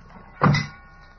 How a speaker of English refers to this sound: Okay, heave it in. Slam the doors.